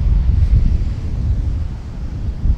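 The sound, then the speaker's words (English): Steady, loud wind buffets the microphone with a deep rumbling roar, while ocean waves wash along underneath at a beach in a continuous seaside wash, with no voices. “We actually made it to the water. Wow. Look at those waves. It is a very impressive and beautiful beach here.”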